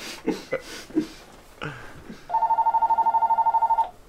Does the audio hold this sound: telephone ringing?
yes